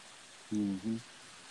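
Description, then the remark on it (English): Steady, soft hiss of rain falling, heard from a front porch, with a brief two-part low voice sound cutting in about midway before the patter continues alone. “Oh, I hear the rain.”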